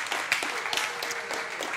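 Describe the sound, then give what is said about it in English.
A conference audience applauds a volunteer, a dense, steady patter of many hands clapping at once, with brief sharper claps poking out of the wash. The applause holds at an even, moderate loudness throughout. “And please applaud him because it's he took the risk.”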